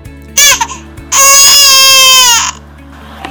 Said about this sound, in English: After a few minutes waiting, Stan heard Baxter meowing loudly and another sound like a baby's crying.